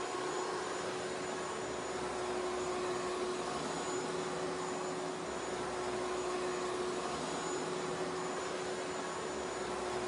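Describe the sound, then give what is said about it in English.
A Henry hoover vacuum cleaner runs steadily, a loud continuous whooshing drone with a sharp whine on top, unbroken for the whole stretch with no voices. “the UK government has announced that Mr. Henry Hoover will be tasked with cleaning up this mess.”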